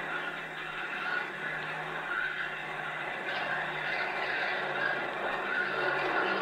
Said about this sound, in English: It's planes. The RAF. Good old RAF. I wonder what they intend doing.